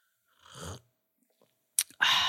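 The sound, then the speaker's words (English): Wet slurping as someone sips hot lemon balm tea: one drawn-in slurp, a short pause, then a sharper slurp and a final noisy swallowing sip. No talking. “I'll have a little sip. Oh, it might be a bit hot.”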